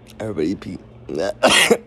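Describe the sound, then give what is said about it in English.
A voice makes a few short throaty vocal sounds, then breaks into a single loud, harsh cough burst, from a person coughing after smoking and clearing the whole bowl. “That too, but also I be coughing because I'd be clearing the whole bowl.”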